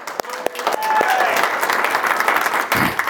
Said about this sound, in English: Let's give him a round of applause. Okay, let's give him a round of applause.